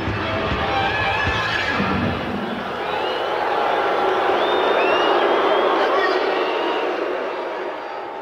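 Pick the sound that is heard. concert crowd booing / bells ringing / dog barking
concert crowd booing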